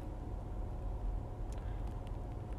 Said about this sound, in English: Like, I'm sitting right here. I'm actually in my car.